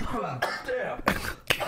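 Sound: coughing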